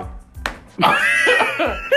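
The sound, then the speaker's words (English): A single quick, fleshy slap of a hand smacking a belly, followed right away by loud, high, drawn-out vocal whoops or laughter. “You know, let me slap it.”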